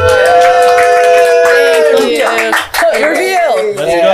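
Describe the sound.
An audience in a room claps loudly and steadily for about four seconds, giving a warm round of applause to a guest being introduced, while high voices whoop and cheer over the applause, with a brief dip partway through.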